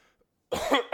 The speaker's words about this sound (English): was that real? A what? Cough.